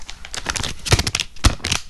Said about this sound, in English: It's the paper.